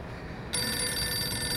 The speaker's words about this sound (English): The phone is driving me nuts. Get that, and get rid of them, would you?